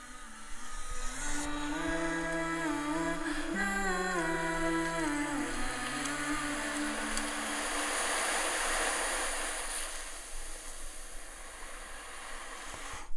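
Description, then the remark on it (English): Steady ocean waves wash in as a broad, hissing roar, rising as a few sustained musical tones fade out, then continuing alone at a moderate, even level. “So the reason that I put the ocean sound in there is it was to symbolize that now I had left the shores of the country in which I had all of these relationships.”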